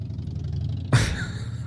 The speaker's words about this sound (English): As you can hear by the sound of that motorcycle, I am in my car trying to crank out a new episode with very, very little, very little time, very limited on what I can do today.